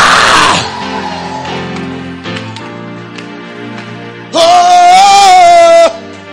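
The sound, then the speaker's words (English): An audience bursts into loud screaming and shouting for joy, with a noisy crowd roar at the start and a sustained, piercing high-pitched scream rising near the end. “Let the redeemer of the Lord shout for joy. Let the redeemer of the Lord scream.”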